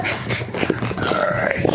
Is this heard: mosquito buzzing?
no